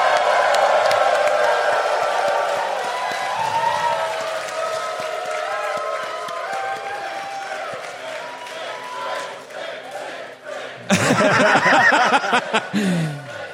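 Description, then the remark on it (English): A large crowd roars with a dense wash of overlapping voices, then erupts into a sudden, louder burst of wild cheering near the end. “now, batting, Babe Ruth. The crowd goes nuts.”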